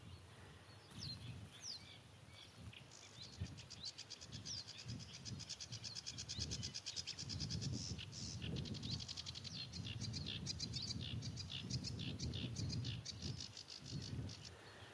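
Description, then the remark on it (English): A busy, chattering sedge warbler song of rapid scratchy chirps and trills rises from a dense background chorus of reed warblers singing steadily, with a low rumble beneath and no voices. “You can hear a background chorus of reed warblers.”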